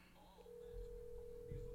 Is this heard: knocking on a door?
no